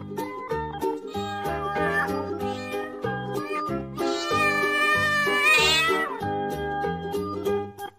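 A long, drawn-out cat meow rises over a steady, bouncy musical backing, bending downward at the end before the music carries on alone.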